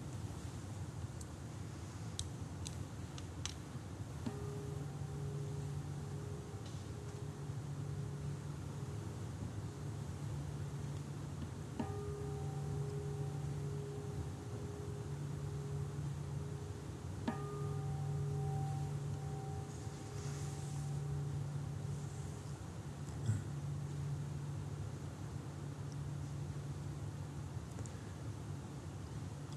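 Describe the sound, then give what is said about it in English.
Three strikes of a meditation bell, rung to begin a meditation sit, spaced several seconds apart, each a soft, mellow tone that hums on and fades slowly over a low, steady background drone. “So I like to begin, just as we traditionally ring a bell to end, I like to bookmark the sit just with three rings of the bell to begin.”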